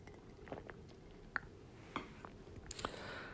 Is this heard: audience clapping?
no